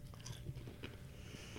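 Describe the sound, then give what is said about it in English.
Biting and crunching on a crisp jalapeno lime snack, with a few sharp crunches followed by steady chewing, fairly loud with no talking. “Crunchy and delicious, I'm assuming.”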